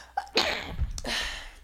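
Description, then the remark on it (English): A single forceful sneeze: a quick sharp intake followed by a loud, breathy burst that trails into a noisy exhale. No talking accompanies it. “wait, I gotta sneeze.”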